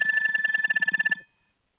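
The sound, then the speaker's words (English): A kitchen timer bell rattles off a fast, continuous metallic ring for just over a second, then cuts out abruptly into silence. It is fairly loud, with no voices over it. “Your eggs ready? Yeah. Your bell rung?”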